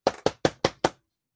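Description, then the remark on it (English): Five quick, evenly spaced knocks, like a rhythmic rap on a door, fairly loud, with no voices, then silence. “If you black in America and you hear at your door and you open it and it's your cousin or your uncle or your auntie or something, a question you might ask is, why are you knocking on my door like the police?”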